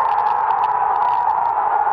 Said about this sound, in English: Here in the USA, thousands gathered at outdoor screenings for the historic soccer match taking place across the Atlantic Ocean when Italy beat England in the European Soccer Championship. This was the moment of victory at a street party in Manhattan.